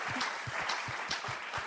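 An audience applauds a Bible verse that has just been read, many hands making a dense, continuous patter with sharper individual claps popping out at an even, moderate loudness throughout.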